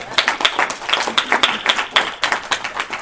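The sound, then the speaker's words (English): A crowd applauds steadily to thank a woman, many hands clapping in a dense, bright patter that keeps an even level for the full few seconds, with no voices standing out. “So let's just thank her again with our applause.”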